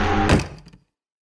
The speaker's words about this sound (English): I took another step towards him, and our bedroom door slammed shut.